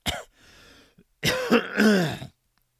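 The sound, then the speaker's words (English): A loud bout of harsh coughing: one sharp hack, a brief pause, then a longer raspy, strained stretch of coughs before it stops. No one speaks. “voice broke into a coughing fit again.”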